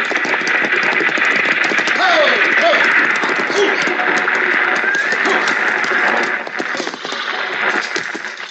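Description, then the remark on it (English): A six-horse stagecoach rolls along with the team's hooves clopping steadily under a dense, continuous rumble, fairly loud throughout, with a brief whinny early on. “Driving a six-horse hitch ought to keep him awake.”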